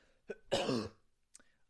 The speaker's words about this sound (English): I haven't had like a cold all year, and I haven't been coughing today. And as soon as I start recording, I'm coughing. I don't get it.